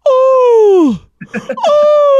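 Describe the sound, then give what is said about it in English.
A voice imitates a woman's loud, dramatic yawn, which she makes at least ten times a day while stretching her arms over her head: a long moaning tone sliding downward in pitch, a brief choppy vocal break, then another sustained groaning note. “At least 10 times a day, she will make the dramatic yawn sound and stretch her arms out over her head.”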